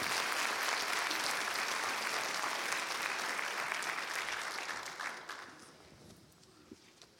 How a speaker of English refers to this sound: You can applaud him. I think the Lord will be honored in that.